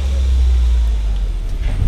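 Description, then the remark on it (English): A tram at Epcot rolls along with a loud, steady low engine rumble that holds throughout as it slows toward a stop, with no voices over it. “Clear through the turn. Alright folks, wait for that stop.”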